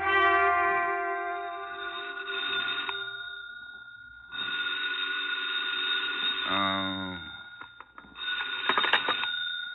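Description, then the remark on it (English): A telephone bell rings loudly in long, buzzing bursts separated by brief pauses, its bright metallic tone repeating several times with no one speaking. “My half-conscious musings didn't move me forward any, but the phone call that awakened me did.”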